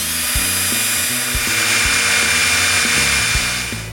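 A power drill whines steadily as it drills into a metal safe found in a scrapyard, its motor pitch shifting and stuttering as the bit grinds into hard metal, with brief bumps and changes in load throughout.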